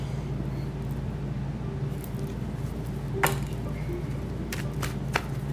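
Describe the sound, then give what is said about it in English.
Tarot cards being shuffled to draw three cards for an earth sign reading: a handful of short, crisp flicks and snaps at irregular moments over a steady low background hum, with no one speaking. “Let me shuffle this. I need three cards for the earth sign.”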